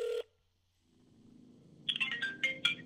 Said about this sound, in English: Reaching for your cell phone, you call your manager.